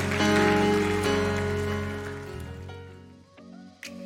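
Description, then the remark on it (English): A church audience claps for the Lord at a morning service, steadily over sustained organ-like chords, the dense clatter of applause loudest at first, then thinning out as the held tones fade toward the end. “Come on, can you clap it up for the Lord this morning?”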